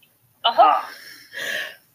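A loud, sudden allergy sneeze bursts out, then a second shorter breathy burst follows a moment later. No talking around it.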